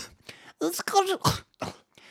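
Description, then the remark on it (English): A voice imitates a woman coughing through a speech at a conference, with short harsh cough-like bursts breaking up garbled, speech-like sounds, moderately loud. “the way that she coughed through the entire thing”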